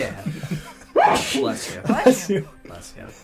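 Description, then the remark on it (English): A loud, sudden sneeze bursts out with a sharp breathy onset and a voiced rising edge, set between stretches of people talking quietly. “Bless you.”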